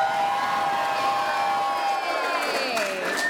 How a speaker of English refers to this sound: And this is part where you guys cheer in a second after I say who we are, is ….